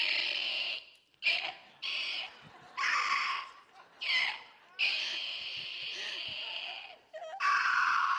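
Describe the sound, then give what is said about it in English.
A gopher lets out a series of harsh, raspy screams at night, repeated in bursts with short pauses between, loud with no one talking. “It's a gopher.”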